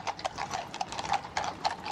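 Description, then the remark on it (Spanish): The hooves of a rented horse pulling a carriage clip-clop at a steady trotting rhythm, a rapid series of sharp knocks, with a faint rattling, mechanical undertone of the carriage rolling along. “Puesto que mi auto había quedado totalmente inservible, me vi obligada a alquilar un caballo y un carruaje.”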